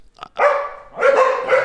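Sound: corgi barking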